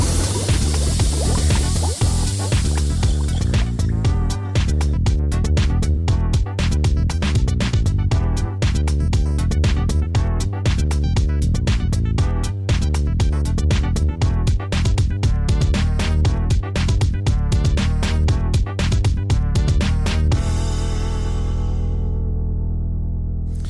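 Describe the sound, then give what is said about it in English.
Loud, continuous bubbling liquid in a laboratory, with a dense stream of rapid pops over a steady low gurgle, softening toward the end. No voices. “The lab's loud, isn't it? There's a lot of bubbling noises.”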